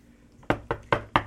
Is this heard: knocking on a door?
yes